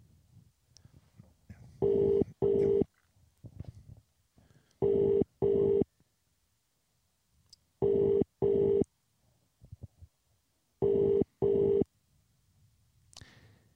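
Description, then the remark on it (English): A telephone rings in the classic double-pulse pattern, four pairs of electronic trills spaced evenly apart, loud, with faint low rumbling between rings and no talking. “Yeah, pick up the phone.”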